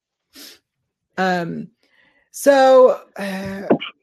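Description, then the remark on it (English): A quick sharp inhale, then a series of three loud, voiced sneezes, each a throaty burst with a hissing edge, the last one ending in a brief snort. “Sorry. Bless you.”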